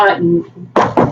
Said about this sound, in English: Knock on wood. that's me knocking